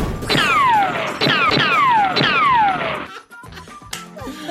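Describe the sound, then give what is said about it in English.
A gunshot sound effect fires three times in a steady rhythm, each sharp bang trailed by a whistling tone that sweeps downward in pitch, followed by a brief clatter of softer mechanical noises. “You just heard the sound of a gunshot, but he did not shoot that shot.”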